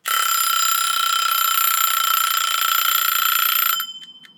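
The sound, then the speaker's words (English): A mechanical kitchen timer with a red dial rings loudly and continuously, a bright metallic bell clatter like a school bell, lasting nearly four seconds before cutting off with a few fading rattles. “That ring is gorgeous. It's a little bit like a school bell ring, if I'm honest.”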